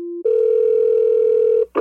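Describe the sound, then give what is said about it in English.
After a phone call is hung up, a steady electronic telephone tone hums loudly for about a second and a half after a brief lower beep, then cuts off with a short click at the end. “I'm hanging up.”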